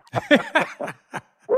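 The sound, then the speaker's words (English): Dogs bark excitedly at a home in Nashville as someone arrives home, in a quick, uneven series of about six sharp yips and barks, fairly loud, with brief gaps between them and no talking. “My dogs get crazy.”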